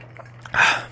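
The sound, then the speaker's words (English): Someone takes a drink of water: a couple of faint sips, then a short, breathy gulp or exhale after swallowing, with no talking. “One second, I'm drinking some water.”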